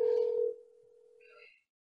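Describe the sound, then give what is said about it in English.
A ringback tone on a phone call to a McDonald's restaurant in Mobile, Alabama: one steady electronic tone that starts loud, drops to a quieter hum, then stops after about a second and a half, leaving silence with no answer. “They might not even have a phone plugged in.”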